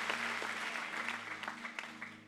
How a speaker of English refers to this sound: Man, there's so many hands. Come on, let's really clap our hands. Because every hand represents a soul that God loves passionately.